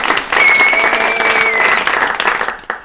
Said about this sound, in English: I'm a boss. Clap for me, please.